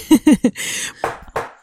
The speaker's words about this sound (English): That was me banging on the table.